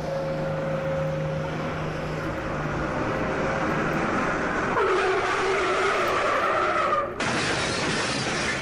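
A bus skids with a long, loud tire screech over roaring engine noise, then slams into something with a sudden crash and shattering near the end.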